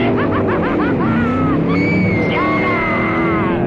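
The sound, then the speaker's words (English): A voice imitates a flatbed truck revving and pulling away, with a wavering, rising engine drone that climbs in pitch and then holds steady, loud. “I said, "Hit the gas, Daddy, hit the gas."”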